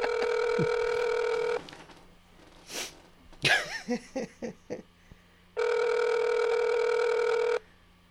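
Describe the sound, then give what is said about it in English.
A phone ringback tone sounds twice, each a steady, buzzy burr about 1.5 seconds long, with a sniff and a short burst of coughing or throat noises in the pause between rings, while a call waits for a woman to answer. “It's taking too long. What is the problem? It is indeed. Here we go. Let me talk to her. If she answers the phone, let me scream.”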